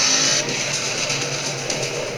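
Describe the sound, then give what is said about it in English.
A car engine roars loudly and steadily throughout during a car chase, a dense continuous mechanical drone with a faint high whine at the very start and no voices. “Let's speed up the car chase.”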